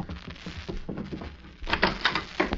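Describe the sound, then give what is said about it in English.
Soft shuffling and patter, then a door is opened to let people in, with a burst of louder clattering and rattling that settles briefly and flares up again. “When they come to the door, Mag, you open it so I'll get the drop on them.”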